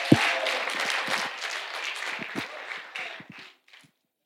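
A group applauds in a short, dense burst of crackling claps that holds steady for about three seconds, then thins out and stops. No one speaks.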